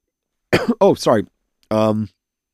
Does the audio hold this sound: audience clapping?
no